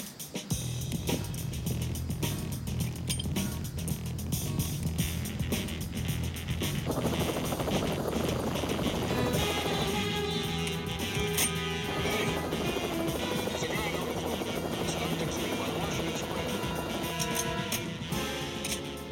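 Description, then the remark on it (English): A police patrol helicopter flies overhead, its rotor beating in a steady, loud churning drone that swells and holds throughout, with no voices present. “The helicopter patrols that they've set up have brought Scorpio to the attention of the passing helicopter.”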